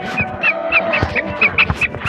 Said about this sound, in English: Time to put my chickens to bed. Hi, darling. How you doing? Time to go to bed.